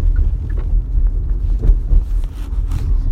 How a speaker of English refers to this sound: That's just the hazards of when you podcast and drive, and that's pretty much been the thing of, what I do is when I drive through traffic rush hour, I podcast.